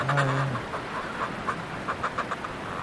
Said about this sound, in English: This is the noise of fulmars coming back to their nests. You get a good view of some of them here chatty, as well. Pretty chatty, these fulmars here. Right inside the nests. They throw their heads back and really create this funny guttural.